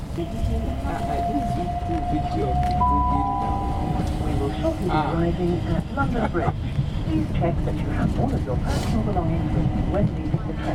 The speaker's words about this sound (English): We're on the train heading up to the start line.